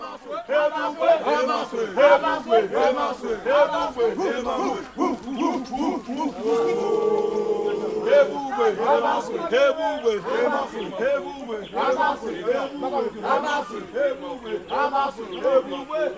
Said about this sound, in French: Les initiateurs commencent à faire des parades aussi avec des bâtonnets, des bois, mais bien flexibles. Et ils commencent à chanter, à crier.